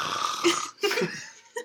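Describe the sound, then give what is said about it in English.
Someone imitates snoring with their voice, acting out a drunk person falling asleep: two rough, throaty snorts followed by a short, clipped nasal snort at the end. “The snore was a good addition, mm-hmm.”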